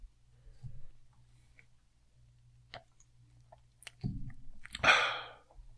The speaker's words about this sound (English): I'm sorry I took a sip of my tea.